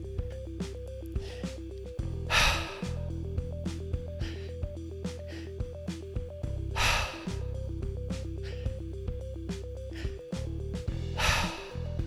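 Deep breathing through the mouth in a guided breathing exercise, with soft drawn-in inhales through the belly and chest and three loud, airy exhales spaced about every four seconds, all over a steady, gently pulsing musical backdrop.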